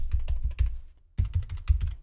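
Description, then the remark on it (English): Rapid clacking of keys on a computer keyboard, a dense run of fairly loud keystrokes with a brief pause in the middle before the typing resumes. “See, isn't that nice to hear me type while the show goes on?”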